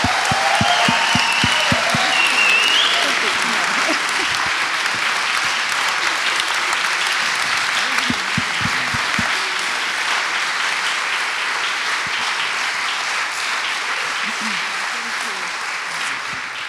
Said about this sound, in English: And we had the most amazing welcome. So can we just give these guys a massive round of applause, please?